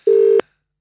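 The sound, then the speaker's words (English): A single short, steady electronic telephone tone of a call to Luke Shuey's phone ringing out on the line, sounding loud and clean for about a third of a second before cutting off into silence. “Why are you calling Luke's phone?”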